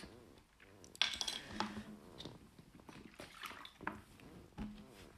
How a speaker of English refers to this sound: Excuse me, I need that water for my voice box. It's absolutely killing from talking for this long.